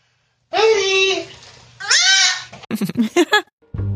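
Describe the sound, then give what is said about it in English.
A goat bleats twice, each cry loud, drawn-out and quavering, the first longer than the second. Afterward, people begin talking. “I like it how the goat's tongue comes out when it yells.”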